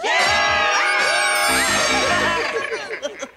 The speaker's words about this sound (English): More of their screams can be heard from outside your doors, sometimes even sounding of maniacal laughter. Their hands will claw at your windows. Oh! There it is again!